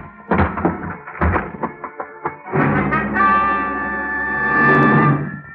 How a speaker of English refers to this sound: I didn't bother to look for the apartment house manager. I didn't even bother to pick the lock. I put my shoulder to work on the door.